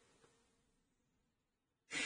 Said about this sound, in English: I hear you breathing over there.